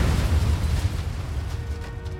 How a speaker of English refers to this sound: Just moments after Heydrich squeezed the trigger, Kubisch lobbed a bomb at the Mercedes. It landed next to the rear passenger tire and detonated.